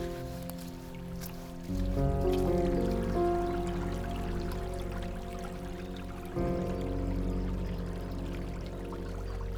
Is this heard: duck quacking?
no